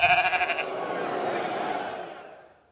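A sheep bleats in a long, quavering cry, wavering rapidly at first before settling into a steadier drawn-out tone that fades away at the end. Fairly loud, with no talking.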